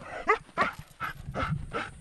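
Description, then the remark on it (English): A tracker dog following a scent gives a quick series of about five excited, high-pitched yelps and barks in an uneven rhythm, with faint rustling and no talking, while led on a leash by a wildlife ranger past thorned bushes and through brush on a hill in southern Kenya, during a training exercise. “Winding up a hill in southern Kenya, a tracker dog is guided by a scent, past thorned bushes and through brush.”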